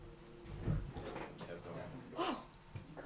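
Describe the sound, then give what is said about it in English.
A chair scrapes and knocks as it is dragged and shifted into place, with a couple of louder bumps, while voices murmur indistinctly in the background. “No, he's just getting a new chair.”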